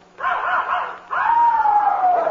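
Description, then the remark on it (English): A puppy named Tiger lets out high, whiny yips: a short wavering cry, then a longer yelp that slides downward in pitch, loud and insistent with no one talking. It has been crying for about five hours. “I mean, he's only a pup.”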